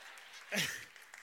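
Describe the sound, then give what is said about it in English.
One woman in the audience claps in a brief, sharp burst that quickly fades, with a short falling vocal cry at the same moment, over a quiet hiss. “She's the only one to clap for that.”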